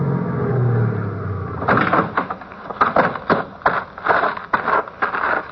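The engine of the car seen coming out of Allardyce's rumbles low for a moment, then cuts off, followed by a run of sharp clunks and rattles like a car door opening and shutting, with no talking.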